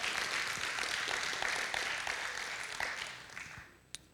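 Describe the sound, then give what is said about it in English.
A crowd applauds steadily, a dense wash of many hands clapping at moderate volume that gradually thins and fades toward the end, with one sharp clap near the close. “Come on, give him a good round of applause.”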